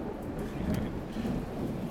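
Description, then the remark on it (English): Heavy rain roars steadily with a deep, low rumble of thunder rolling underneath the downpour; the sound is dense and continuous, with no voices. “Thunder action? Yeah. Yeah, this is the first rain of any amount in a while.”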